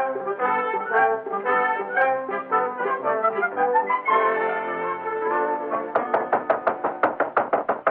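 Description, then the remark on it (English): Dramatic orchestral music plays, then gives way to a rapid, insistent series of about ten loud knocks on a door, evenly spaced, with no voices. “Who is it? Open the door, quick.”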